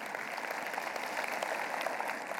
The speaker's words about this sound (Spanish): Le damos un aplauso al Señor por ello.